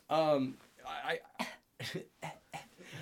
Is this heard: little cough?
yes